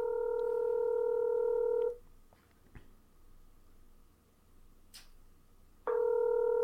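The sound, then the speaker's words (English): A phone line rings while calling a cell phone: a steady electronic ringback tone sounds for about two seconds, falls silent for a few seconds of faint line hiss, then starts ringing again before going to voicemail. “It's gonna go to voicemail.”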